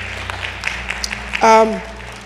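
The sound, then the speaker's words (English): Scattered, uneven handclaps from an audience at a morning sermon ring out for about a second, followed by a single voice calling out briefly with a falling pitch as the clapping fades. “You can clap. That's good.”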